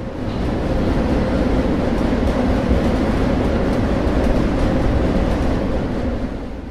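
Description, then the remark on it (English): Loud, continuous rumble and rattle of a moving freight train heard from aboard, a dense low roar with steady clattering texture and faint metallic ticks, no voices. “Most train riders have been pulled off at some point, and it's extremely uncomfortable. It's deafening.”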